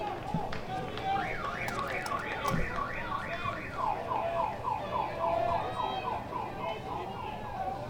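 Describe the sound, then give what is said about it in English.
A car alarm sound effect, not an actual car alarm, played over the stadium speakers at a baseball game, wails in rapid rising and falling sweeps, shifting into a different warbling pattern partway through, booming over a noisy crowd. “That is not an actual car alarm. That is a sound effect because it went up and over the screen.”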